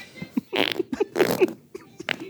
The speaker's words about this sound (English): I want to hear them again because they're not very loud. Fart number one and fart number two.